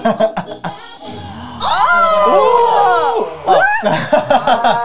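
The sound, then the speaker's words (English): A loud burst of crowd cheering and whooping swells for a couple of seconds, many overlapping voices rising and falling, with a person talking briefly before and after it. “Did they just edit in random crowds?”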